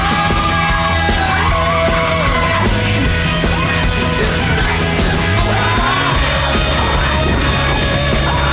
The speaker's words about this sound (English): Like their sound effects editing is just so consistently incredible. Oh, just her screaming while on fire for the longest time.